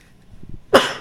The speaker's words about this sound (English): Bless you